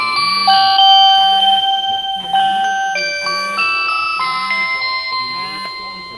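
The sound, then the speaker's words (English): A chair exit alarm, set up to signal when a man gets up from his chair, is triggered as someone gets up from the chair and plays a bright electronic chime melody, steady high tones stepping through a tune for several seconds, with a low pulsing hum repeating underneath at a regular beat. “So we want to know when he gets up. So I'm going to sit in his chair.”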